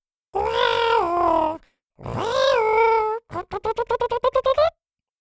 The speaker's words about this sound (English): And it was her feelings that allowed her to help the adorable little pufkins that were now purring at her feet.